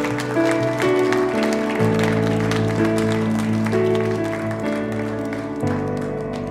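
A church audience claps steadily to encourage those who raised their hands during prayer. The dense patter of many hands blends over sustained, shifting organ or keyboard chords that fill the whole stretch at a fairly loud level.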